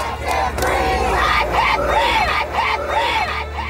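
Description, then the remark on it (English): A large protest crowd of thousands, defying COVID lockdown rules in solidarity with American protesters, chants "Black Lives Matter" in unison, voices rising and falling in a steady repeated rhythm over a constant roar of noise, loud and sustained throughout. “Thousands defied the COVID lockdown rules to deliver a message of solidarity with American protesters.”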